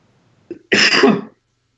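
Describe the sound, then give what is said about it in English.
A single harsh cough, preceded by a brief throaty catch, bursting loud for about half a second before cutting to silence. “Sorry, guys, for all this coughing and snorting.”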